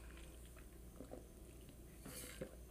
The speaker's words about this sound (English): Grab a drink of water here.